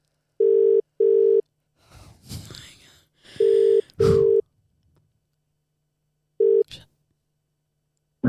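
A phone line's ringback tone purrs in steady double pulses, repeating a few times while someone breathes and murmurs quietly between the rings.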